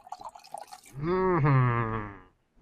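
Vodka is poured into a glass, starting with a few splashy trickles and then settling into a steady, resonant gurgle that lasts about a second before fading. It is clear, with no talking.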